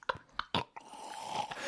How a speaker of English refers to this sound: Hold on, I need a drink of water.